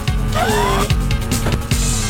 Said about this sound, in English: That sounds like Cartman driving around in a car. It's because it is. What year was this? 2000. That was 2000.